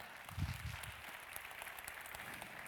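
An audience at a church service applauds steadily, a dense patter of many hands clapping at once, fairly soft, with a brief low rumble near the start.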